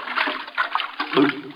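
A loud splash as someone jumps into a brook, with churning, sloshing noise running throughout and a heavier plunge near the end, with no talking.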